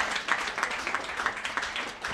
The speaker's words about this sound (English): Fuck, another round of applause for these two.